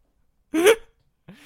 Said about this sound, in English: He sneezes and she hears it on her side.